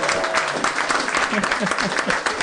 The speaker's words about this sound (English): Let's give him a hand, everybody.